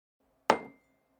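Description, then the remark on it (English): One sharp clink of mugs knocking together as they're lifted out to pour tea into, ringing briefly before fading, with a faint steady hum in the quiet background. “Right, now where are the mugs?”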